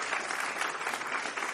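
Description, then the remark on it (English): An audience applauds the Lord in thanksgiving with dense, steady clapping that fills the whole clip, a bright, even wash of many hands with no voices standing out. “Can we just give the Lord a good round of applause and thanksgiving for Him today?”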